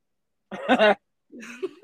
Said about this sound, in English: We're okay. Just, and then on that note, we're just gonna, you know, just keep on, you know, while she coughs in the background. Ah, talk over it.